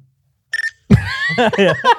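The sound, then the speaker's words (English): A quick electronic chirp, a few rapid high-pitched beeps like a Nextel push-to-talk phone, followed by a burst of exaggerated, wavering vocal sounds. “My Nextel chirping.”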